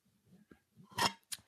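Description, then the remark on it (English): A few quiet sips and swallows of water, with low soft gulping sounds followed by two brief, sharper wet clicks near the end. No voices. “I'm taking a drink of water and in honor to you.”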